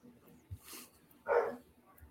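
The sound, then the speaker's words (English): A dog lets out one short, sharp, clear bark, following a soft thump and a faint airy swish against an otherwise quiet background. “And a dog bark.”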